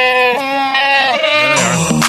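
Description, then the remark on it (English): A voice imitates a goat's bleat in a rehearsal of an eighth-grade "Throat Goat" act: one loud, continuous, wavering cry that holds for about two seconds, shifts pitch partway through and cuts off sharply. No other sounds or talk. “Oh, no, they're doing Throat Goat tonight.”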